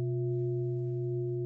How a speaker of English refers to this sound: We, however, like certain things and don't like certain things, like someone clanging this beautiful bell.